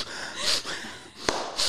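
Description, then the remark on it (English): A voice imitates the sniffling of someone crying while listening to a story: two short, airy nasal sniffs separated by a pause, with a faint click between them. No talking. “Like sniffles, and I'm hearing this, I'm like, oh my God, I maybe should have told him.”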